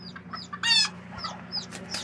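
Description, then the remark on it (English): Hens fighting with sharp, agitated squawks and bursts of clucking, one loud scuffling flurry in the middle, over a steady low hum, with no talking. “but actually I wanted to, there's a fight, be a hen fight.”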